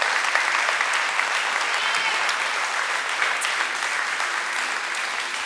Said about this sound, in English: Would you do me a favor and stand to your feet? Would you give Jesus a quick clap of just appreciation? So good.